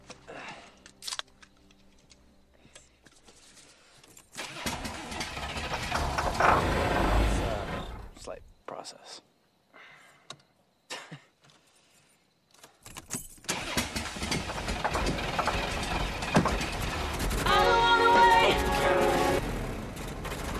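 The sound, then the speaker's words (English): A car engine cranks and turns over, roaring up loudly in a long surge, dying off, then a second sustained rev follows. A voice speaks briefly in a quiet gap between the attempts. “And then he tries to turn the car on”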